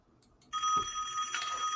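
signal or alarm, telephone ringing

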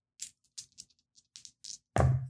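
household object, dice being rolled

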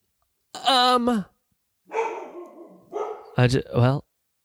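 animal, dog barking

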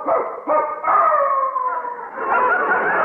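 animal, dog howling

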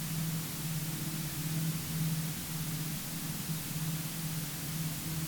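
sound effect, radio static

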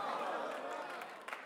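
crowd, audience clapping

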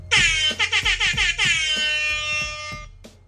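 sound effect, air horn sound effect

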